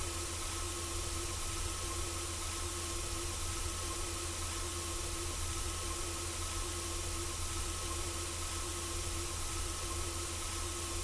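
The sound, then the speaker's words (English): A steady, unbroken sizzling hiss like a frying chip pan, dense and even in loudness throughout, with faint sustained humming tones running underneath and no voices. “A frying chip pan.”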